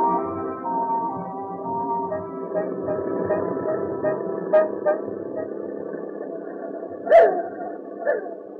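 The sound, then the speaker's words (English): A car drives through the industrial district of Paris with a low engine rumble while its horn blares in long, sustained honks, with a few sharper short toots near the end. “Where are you taking us in this car, Captain Henry?”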